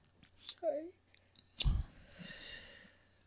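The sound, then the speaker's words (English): A person yawns close to the microphone, with a short voiced groan followed by a long, breathy exhale. Faint clicks and mouth noises come just before it. “You gotta yawn off mic at least. You talk off mic and you yawn on mic.”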